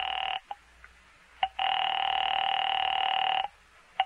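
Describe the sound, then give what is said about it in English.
A telephone call placed from a phone booth ringing through: a brief burst of buzzing ring tone, a pause with soft clicks, then a longer steady ring lasting about two seconds, followed by another click. No voices. “I made another call there in the phone booth.”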